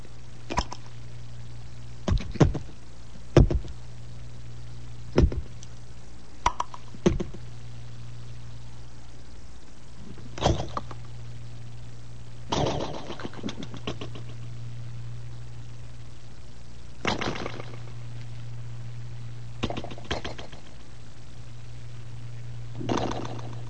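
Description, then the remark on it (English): A voice imitates cream of wheat starting to boil: sharp, irregular pops and short bursts spaced unevenly over a steady low hum, with a few longer sputtering bursts between quieter gaps. “That is my surrealistic version of the sound of cream of wheat just arriving at the boiling stage, which is a very exciting stage for a young boy to go through, the boiling point.”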